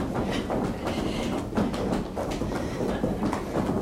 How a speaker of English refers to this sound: So we're literally waking up or rebooting our superhuman machine just by doing something as silly as stomping our feet and acting like a petulant child.